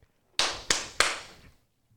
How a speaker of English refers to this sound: Okay. Give me a nice clap.